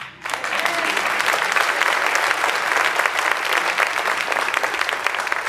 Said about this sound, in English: Now you can clap.